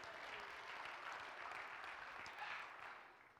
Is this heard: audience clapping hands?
yes